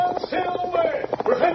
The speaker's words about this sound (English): Return with us now to those thrilling days when the West was young. From out of the past, from the thundering hoofbeats of the great horse Silver, the Lone Ranger rides again.